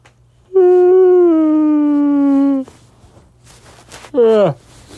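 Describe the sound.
A long, drawn-out voiced yawn holds a steady tone for about two seconds, sinking slightly in pitch, then after a pause a brief, sharply falling whine-like yawn follows.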